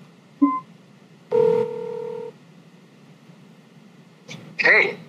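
A short electronic chirp followed by a steady two-tone beep lasting about a second, then a pause and a brief burst of warbling ringtone, all clear over a low background hum, as a phone call is made.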